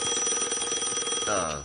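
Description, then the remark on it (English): A telephone that has just been unplugged rings with a fast, rattling bell trill, loud and steady for under two seconds, with no voices, and a wavering tone rises over the ring near the end. “Didn't you just unplug that? Yeah, this happens sometimes. It's a really weird phone.”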